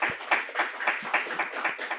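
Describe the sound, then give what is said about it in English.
Applause from a small group, a steady patter of hand claps at a brisk, even rhythm, moderately loud and continuous, with no voices heard. “Where's your fucking applause now?”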